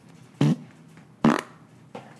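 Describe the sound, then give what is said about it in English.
Two loud, wet-sounding fart bursts about a second apart, each brief and sputtering, followed by a fainter third puff, caused by eating Chick-fil-A after a run; no talking. “Now that was not from the coconut water, though possibly watery like the coconut water.”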